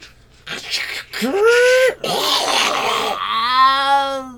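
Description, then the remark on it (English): Loud, drawn-out yowling of a cat in heat inside the Disco Box: a few rising and falling wails, then a longer strained, buzzy howl that holds steady before fading, with no talking. “it was totally worth it to hear the sound of a cat in heat dying inside the Disco”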